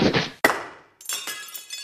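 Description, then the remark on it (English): A loud crash of a car's driver's side window glass breaking in a smash-and-grab break-in in Columbus: a sharp impact followed by a burst of shattering, then bright tinkling fragments scattering and settling over the next second, with no voices. “Both driver's side windows crashed.”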